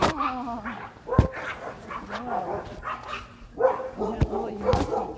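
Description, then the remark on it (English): A Yorkshire terrier barks in a few sharp, high yaps spaced irregularly, with whiny, whimpering vocal sounds in between, moderately loud. “Oh, did you find a little dog? A little Yorkie!”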